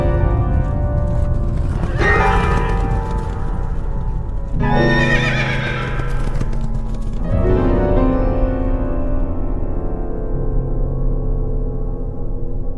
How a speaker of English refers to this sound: The horses turned for home. They were trying to get him to stop the race. The horses went scattering.